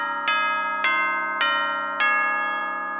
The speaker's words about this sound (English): Hey, that's the signal. You hear those chimes. Well, it's a wrap.